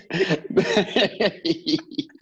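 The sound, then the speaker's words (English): A fairly loud run of rough throat-clearing bursts from a man, roughly eight in quick succession, each a short raspy push that grows a little lighter toward the end. “You go over there clearing your throat mighty hard.”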